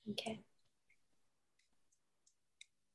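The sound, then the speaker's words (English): A brief burst of a deck of reading cards being shuffled for a card reading, a quick papery flutter at the start, followed by a few scattered soft clicks and taps. Fairly quiet, with no talking. “I'm going to start shuffling through right now. You tell me when to stop.”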